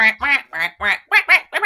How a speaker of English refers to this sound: It's a good song. I love the quacking. The quacking. Yes, I was just going to say. I do love the quacking.